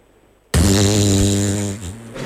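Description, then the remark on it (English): A loud, sustained fart noise made by blowing against an arm as part of a knock-knock joke, buzzing and rippling for nearly two seconds after a sudden start, with no talking. “So I will be providing, using the arm, I'll have you know, listeners, it's not that kind of show. The farts”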